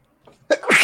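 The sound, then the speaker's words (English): A single loud sneeze from seasonal allergies, starting with a soft sharp intake of breath and bursting into a bright, explosive expulsion. “Oh, God bless you. COVID-19. No, it's just allergy season.”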